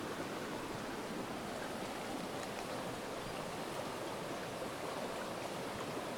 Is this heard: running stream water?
yes